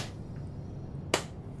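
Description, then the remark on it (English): A single sharp hand clap, the start of a slow clap, rings out against a quiet, low background hum, fairly loud, with no other claps following within the short stretch. “I'm just gonna start walking towards him and slow clapping.”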